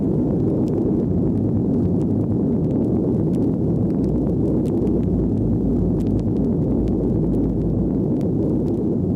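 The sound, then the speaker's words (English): An atomic bomb explosion's deep, roaring rumble, loud and sustained for several seconds without letting up, heavy in the low end with a crackling texture on top and no voices. “The song concludes with the cry Sieg Heil and the cataclysmic sound of an atomic bomb explosion.”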